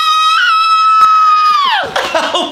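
A concert crowd lets out a loud, sustained high-pitched scream that holds steady for over a second, then slides downward and breaks into a rough, noisy roar of cheering.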